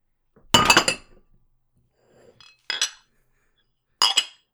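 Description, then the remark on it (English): A teacup is flipped over onto a saucer: a loud ceramic clatter first, then two sharper, briefer clinks of china on china a few seconds apart, with no talking. “Lastly, turn your cup over onto your saucer in 1 quick, solid motion and let the remaining moisture drip out of the tea for a couple of minutes.”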